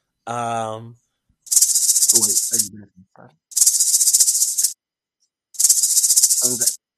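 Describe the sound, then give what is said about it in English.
A rattlesnake rattle sound effect, used to cover over spoken words, plays in three bursts of dry, high buzzing, each about a second long. Brief voice fragments come before and between them. “So you might want to rattlesnake that out.”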